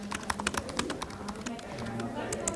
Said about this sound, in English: Inside the Armenian Coding Academy in downtown Yerevan, office workers busily type on keyboards.